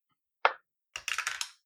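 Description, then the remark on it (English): A single sharp clack, then a quick run of rattling clicks and light thuds as dice tumble across a hard table and settle, rolling a 6 for a contested strength check. Fairly quiet, no voices. “I rolled a 6 on the dice for a 12 total.”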